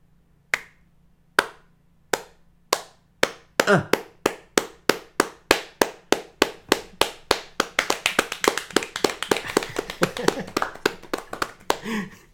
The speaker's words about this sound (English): That's me clapping for us.